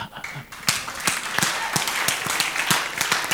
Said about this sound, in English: As you clap, may God connect you.